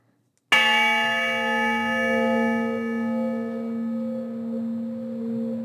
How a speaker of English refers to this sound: And indeed, the honor bell did toll for Luis Oliveira. He passed away in 2018, a year after we spoke, and was laid to rest at Fort Logan.